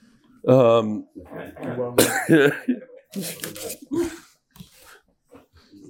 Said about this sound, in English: The whole Suda, I'm coughing at him.